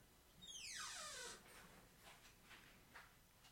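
A studio door creaks open with one drawn-out, high squeak that slides downward in pitch for about a second, followed by a few faint soft knocks and shuffling.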